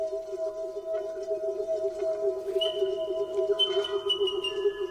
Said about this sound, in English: It's the resonance. The thing about the calls of South Island kakako, unlike any other bird call I've heard in the world, is they seem to be able to produce a natural resonance.